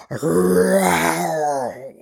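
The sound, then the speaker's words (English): A person imitates an African lion's roar with one long, loud, throaty growl lasting about two seconds. It rises and then falls in pitch, with no other sounds. “It was a lion of Africa.”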